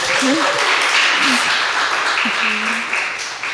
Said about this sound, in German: Ja, danke vielmals, dass ihr alle da seid. Ich würde sagen, das hat schon mal den ersten Applaus verdient, oder?